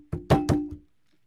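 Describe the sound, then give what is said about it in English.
Four quick knocks on wood, solid and hollow-sounding, the middle two loudest, each with a short low ringing tail, then silence. “I'm going to knock on wood specifically because I think this might actually be a perfect knock on wood moment for it to not work.”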